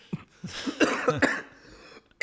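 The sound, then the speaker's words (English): After laughing, a person gives a few short breathy huffs that turn into a run of raspy coughs, four or five harsh bursts, then a pause and one final loud, sharp cough. “Damn it, I can't laugh or else cough.”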